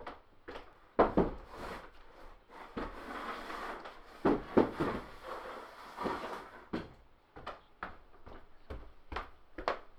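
An empty chair is dragged away from a window to the other end of the room, scraping across the floor in rough, uneven bursts for several seconds, followed by a string of sharp wooden knocks and clicks as it settles.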